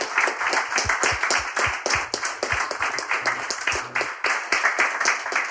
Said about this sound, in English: Well, I think if you can give a round of applause to